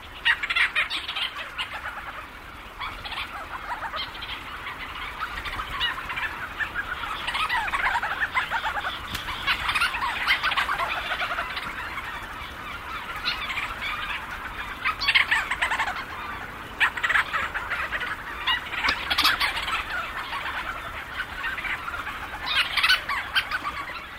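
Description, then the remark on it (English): A dense nighttime chorus of thousands of Leach's storm petrels circling and swooping overhead, many birds calling at once in overlapping chattering, purring trills with sharper bursts rising throughout, continuous and fairly loud, with no voices; recorded by Lang Elliott for the CD Petrel Night. “Thousands of Leach's storm petrels circle overhead, swooping and calling into the night.”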